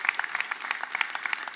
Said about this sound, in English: Yeah, yeah, it's good to clap right there. Good to clap right there. It's a good place.